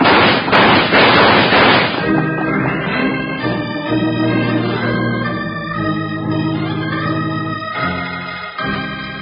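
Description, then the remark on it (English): A rapid, loud volley of gunshots crackles for about two seconds during a shootout in a Wild Bill Hickok radio Western drama, then gives way to a sustained orchestral music sting that carries on to the end. “Shoot your way out.”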